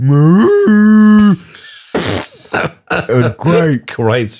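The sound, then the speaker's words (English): A person imitates a cow with one long, low, drawn-out moo lasting about a second, loud, followed by a burst of short, throaty vocal noises. “But you remember that time we pulverized a cow?”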